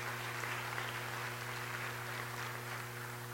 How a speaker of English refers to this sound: Somebody clap your hands this morning. Give God praise.